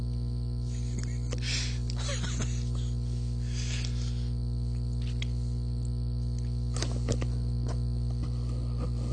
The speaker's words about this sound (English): We've got the buzzing going a little bit